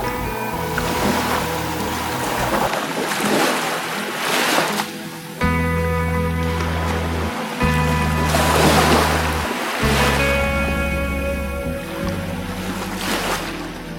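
Ocean waves wash and break in repeated surging swells, a few seconds apart, over a steady low droning tone. No one speaks.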